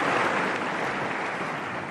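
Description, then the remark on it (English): A crowd applauds a speaker steadily, the dense, crackling patter of many hands clapping at once holding an even, fairly loud level throughout with no voices standing out. “And so this is everybody clapping for him saying that abortion sucks.”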